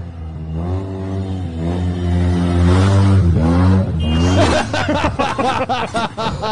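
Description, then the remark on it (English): A long, steady car horn blares loudly for several seconds, followed by bursts of snickering laughter. “Well, I think the car is beeping”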